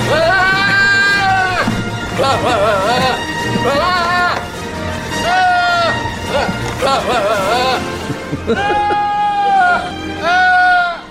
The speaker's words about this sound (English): This is actually a recording of goat yoga. This is goat yoga. Very relaxing, wouldn't you think?